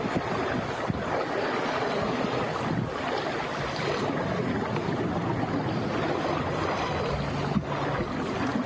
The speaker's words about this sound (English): I just want you to take a moment to take in the sea that's there, to hear its waves.